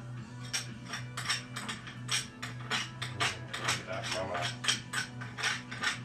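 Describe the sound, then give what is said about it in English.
A utensil scrapes against cats' food bowls in quick, repeated strokes, a steady rhythm of gritty scratches over a low background hum. “Look, I'm gonna even scrape the bowls.”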